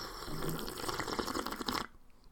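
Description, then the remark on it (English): A loud, wet slurping sip of hot coffee, lasting under two seconds and cutting off abruptly into near silence. “Nah, I got a coffee to sip. Well, give us some coffee ASMR.”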